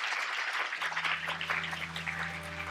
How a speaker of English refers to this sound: All right, everyone. It has been a very fruitful 1.5 hours, and I would like you all to give an applause to our panelists.